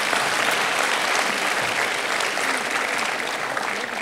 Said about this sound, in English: Give him a round of applause real quick.